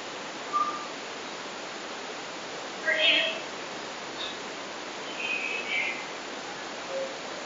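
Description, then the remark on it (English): A faint squeak rises out of steady hiss, followed by a brief, chirpy, parrot-like voice and then fainter voice-like sounds scattered through the noise. “This clip starts off with a squeak, and then what sounds like a parrot, then another voice, and then faintly after this, another voice is detected.”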